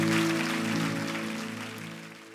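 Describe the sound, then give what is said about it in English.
A church audience claps in agreement after a prayer, a dense, steady patter over sustained keyboard chords, the applause and music tapering off gradually toward the end. “Let's say amen and clap in agreement today, can we?”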